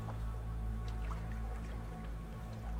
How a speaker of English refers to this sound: I can hear lapping water and seagulls.